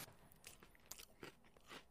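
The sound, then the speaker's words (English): Crunchy chewing of a dry cracker after a large bite of about a third of it, with repeated crisp bites and crackling bursts coming in an uneven rhythm, no talking. “Still chewing. How big of a chunk did you take of this cracker?”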